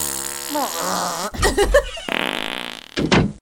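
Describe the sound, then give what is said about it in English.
A person imitates fart noises with their mouth: a long wavering buzzy blurt, a short sputtering burst, then a steady raspy drone and a final quick blast, all loud. “Like, anytime someone is running in and out of a door, when that door opens, instead of a squeak, it's a fart noise.”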